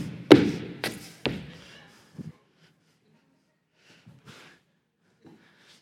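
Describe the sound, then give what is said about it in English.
Three heavy stomps on an old wadded-up sheet of paper thrown down land in quick succession, each a loud thud with a papery crunch, followed by a few quieter shuffles and faint crinkles as things settle. “I can throw it down here and just stomp on it.”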